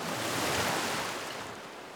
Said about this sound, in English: The wind is whipping the fabric of the drapes. The sound of the waves is very loud.